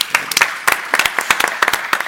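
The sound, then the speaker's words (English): An audience applauds, a dense patter of many hands clapping at an uneven, brisk rhythm, with sharper individual claps standing out from the steady wash of sound. “Along these lines, round of applause from the audience.”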